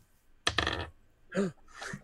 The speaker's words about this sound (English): Oh my God, yeah. I gotta roll these dice, not just drop them.